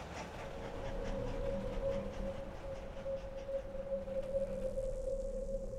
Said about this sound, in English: because it was on this journey that the young man saw a train steaming down the railroad tracks for the very first time. A sight that immediately captivated him, changing the trajectory of his life forever.